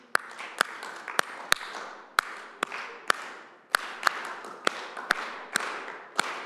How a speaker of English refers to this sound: Okay, now this side over here, I want you to clap with me. We're going to clap a rhythm, okay? So we're going to go.